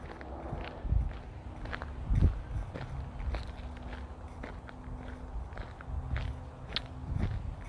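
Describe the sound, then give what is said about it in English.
Steady footsteps crunch over a gravel alleyway in windy weather, in an uneven walking rhythm, each step a gritty, crackling scrape, heard on their own without any talking over a low, constant background rumble. “Now, made out of gravel.”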